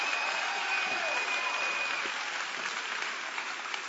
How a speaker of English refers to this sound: Somebody give the Lord a praise. So y'all give her a hand clap.